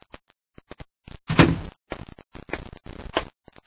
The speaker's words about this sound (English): As the door opens, he turns.